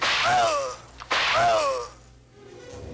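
Two loud whooshing lashes of a whip, with a sharp crack snapping between them, then a quieter, fading tail. No one speaks.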